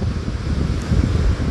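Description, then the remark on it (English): Steady wind buffets the microphone with a low, rumbling roar while surf washes continuously at a beach in Santa Monica, with no voices present. “You see a whole lot of interesting things at the beach.”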